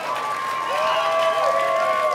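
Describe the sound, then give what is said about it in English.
Audience applause in Colorado for the people whose video got the event to come there, a dense, steady wash of many hands clapping that holds at an even loudness throughout, with a thin sustained tone running underneath. “Give a round of applause for making it come here for you guys.”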